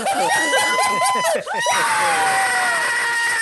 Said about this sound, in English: Oh, God. Loud screaming. I need everyone watching, whether it is live right now in the moment or in the future or listening to this in the future, I need everyone to know the chaos that just happened.